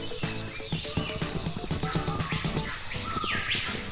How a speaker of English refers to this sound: There's lots of, noises for birds. I'm actually going to turn it down a little bit for the sake of music.